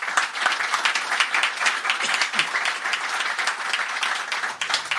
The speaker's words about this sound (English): So before I go on to the next one, just a round of applause for all those people, please.